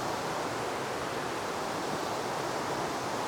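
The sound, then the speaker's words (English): A river with a strong current rushes and gushes hard just below a small cliff overhung by huge beech trees, a dense, unbroken roar of churning water that stays loud and steady throughout, with no voices. “It's only a short distance down, but the river just underneath me is gushing quite wildly.”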